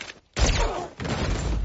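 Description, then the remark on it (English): Two loud bursts of gunfire, one after a brief silence and a second about half a second later, each trailing into a harsh, rumbling echo. No one speaks. “So when those gunshots start firing, I'm like, what?”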